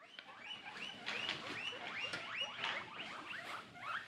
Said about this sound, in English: By which we take being as a compliment, because guinea pigs are wonderful, and here's what they sound like.